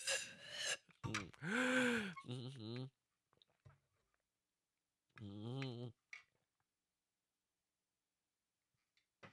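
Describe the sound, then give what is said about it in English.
Someone drinks water, punctuated by loud voiced gasps and breathy exhales between sips, followed by a few faint clicks and long stretches of near silence. “That's why I make noise when I drink.”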